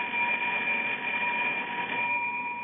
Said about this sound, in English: Right under the button here, it says, ring in case of emergency. But nothing happens. I've been ringing this bell for the last hour, and nothing happens.